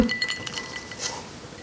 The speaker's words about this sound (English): we sip our evening drinks. Ready to cheers? I'm ready for a drink. Cheers. Cheers.